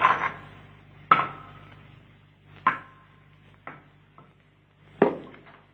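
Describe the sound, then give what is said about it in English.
A rock fragment dislodged from just inside the edge of a circular, water-filled pit tumbles down into it, striking several times in a run of sharp, irregular knocks with brief ringing decays, the last impact among the loudest. No voices are heard. “There's a loose fragment of rock just inside the edge. If only I can dislodge it.”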